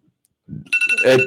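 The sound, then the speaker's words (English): A phone alarm starts ringing, a brief low rumble followed by bright, steady electronic tones with strong sustained high pitches, fairly loud, with no talking. “As another alarm goes off, my bad.”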